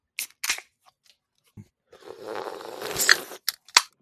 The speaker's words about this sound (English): Slurp.